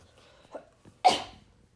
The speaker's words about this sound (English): The cough was included. That was the detective. That was the detective. That was not me. I did not need to cough. That was the detective.